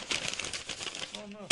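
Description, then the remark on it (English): A paper application form for a fair job crinkles and rustles for just over a second as it is crumpled up and thrown away, followed by a brief voiced sound and a sharp, sudden burst as it ends. “Oh, no. I'm throwing it away.”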